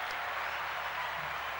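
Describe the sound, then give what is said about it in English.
A crowd applauds to welcome a psychologist and influencer, in a steady, dense wash of clapping that holds at an even level throughout, with no voices rising above it. “The applause were on point and everything.”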